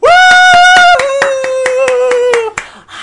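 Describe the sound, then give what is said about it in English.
Steady rhythmic clapping, about a dozen evenly spaced claps over three seconds, underneath a loud sustained tone or held voice that steps down in pitch partway through, then fades out. “You don't clap in Parliament, though, so I don't know.”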